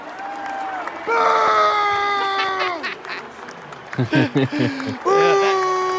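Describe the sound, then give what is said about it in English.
A baseball crowd boos Fauci as he throws out the first pitch at a baseball game, with long, drawn-out, low wavering tones over a steady roar, broken midway by choppy bursts of shouting, then the loud booing swells again. “You notice he's getting booed.”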